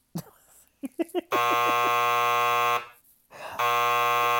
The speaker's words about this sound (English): Yeah, we're going to have to do two buzzers on that because I can't. I literally can't.